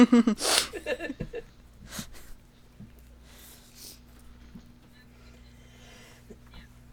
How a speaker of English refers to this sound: Okay. Bless you.